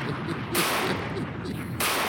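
Loud, dense gunfire crackles almost nonstop, with sharper bursts of shots flaring up partway through and again near the end, over a rough, noisy background.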